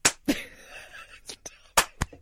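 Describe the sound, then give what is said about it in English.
A few sharp hand claps at uneven intervals, loud and crisp, with a brief stretch of low vocal sound between the first claps and the later ones. “No, madam, I'm applauding you for murder.”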